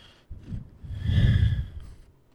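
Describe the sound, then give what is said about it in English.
Heavy breathing from the cat Darwin right up against the microphone, a couple of rough, snorting breaths swelling loud in the middle before fading, with no talking. “That was Darwin's breathing.”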